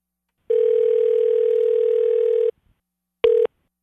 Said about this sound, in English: Okay, so we got the phone number punched in here. Kay. Let's see if we can get her on the phone and surprise her. Okay. Here we go.